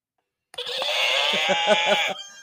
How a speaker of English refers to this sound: That was a horse.